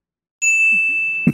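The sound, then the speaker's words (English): A single bright bell ding rings out clearly, its tone sustaining steadily before a soft knock near the end, with no voices present. A man rings a bell, used as a comedic sound effect. “He's ringing the cuckoo bell.”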